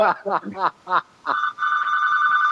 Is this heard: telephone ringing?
yes